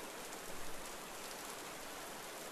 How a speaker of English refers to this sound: Walking along, you see a small brook running through the trees. Water runs over shiny pebbles that glisten in the sun's remaining light. Hear the bubbling brook run through the forest as the sun begins to set.